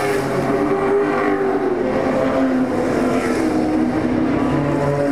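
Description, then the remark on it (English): Race car engines roar steadily, a dense mix of overlapping motors with shifting engine pitch as cars, including a small Ford Escort, pass by, loud and continuous with no talking. “It's a top category, and those last three that you heard were all little escorts, and they're going like the clappers.”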